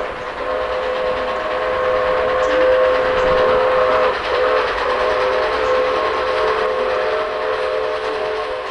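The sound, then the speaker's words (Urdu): A train runs steadily along the rails with a loud, continuous clattering rumble, and a sustained whistle-like tone rides over it for most of the stretch. No voices are heard. “بھگوان کا شکر ہے کہ اس ٹرین حادثے میں کسی کی جان نہیں گئی۔”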